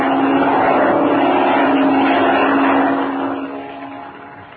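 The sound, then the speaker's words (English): A black propeller airplane drones loudly overhead, its steady buzzing engine hum holding strong before gradually fading as it moves away. No voices are heard. “It's a plane, Chuck. There it is. A black one. Flying directly this way.”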